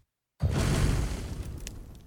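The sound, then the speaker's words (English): After a brief silence, a voice imitates a muffled noise like a roaring fire somewhere in the distance with a sudden, loud, rumbling hiss of breath that holds steady for nearly two seconds and then slowly eases off. “Yeah, basically, it sounds like a roaring fire somewhere in the distance.”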